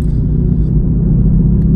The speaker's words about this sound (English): But then I got in the car and I'm driving away, and here I am talking in this podcast in the car.